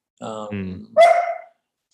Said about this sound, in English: I got a dog, as you can hear. A pandemic dog. It was like right before the pandemic.